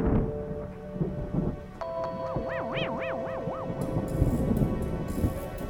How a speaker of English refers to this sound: It hits the rear windshield of his car with a mighty smacking sound, much like a thunderclap.